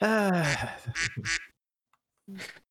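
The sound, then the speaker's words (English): A duck quack sound effect: a long nasal quack followed by several quick, clipped quacks in a burst, then a pause and one final quack, loud. “Definitely better for the duck. A duck.”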